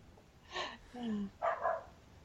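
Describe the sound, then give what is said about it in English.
A dog lets out a few short barks mixed with a brief whiny yelp, ending in two quick barks in succession over a quiet background. “The dog agrees. The dog definitely agrees.”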